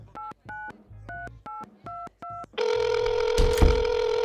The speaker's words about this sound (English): Pardon me a second. I'm gonna make a quick phone call.